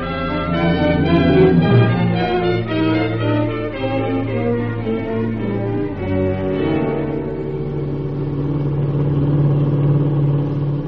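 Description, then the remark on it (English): A black 1941 Plymouth sedan with Pennsylvania plates, driving in Ohio, revs with a rising, throaty whine, then settles into a steady, droning hum as it drives on, loud with no voices. “Black Plymouth sedan, 1941, Pennsylvania license.”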